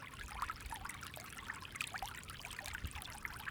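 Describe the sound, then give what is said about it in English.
River water spills steadily over the limestone Espada Dam on the San Antonio River, built some 300 years ago and still functioning: a continuous wash of rushing, splashing water with small bright gurgles scattered throughout, with no voices. “Built some 300 years ago, the limestone Espada Dam on the San Antonio River is still functioning.”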